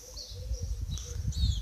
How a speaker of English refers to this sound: These tweets, birds, nature, and all around.